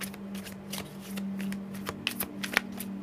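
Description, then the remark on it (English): Tarot cards being shuffled in a quick series of crisp, papery riffles and flicks, with a few sharper snaps near the end as cards are drawn, including the Page of Swords, over a steady low electrical hum. “So now that I pulled the Page of Swords in regards to the Five of Cups energy”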